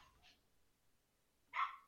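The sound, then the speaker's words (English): A dog barks once, loud, after a fainter short yelp near the start; otherwise the brief moment is quiet with no talking. “Yeah, barking.”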